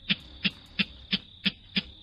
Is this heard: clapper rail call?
yes